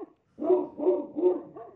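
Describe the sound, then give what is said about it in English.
A dog barks three times in a steady rhythm, moderately loud, followed by a softer fourth yelp; no one speaks. “Who's on the line? Sounds like a dog.”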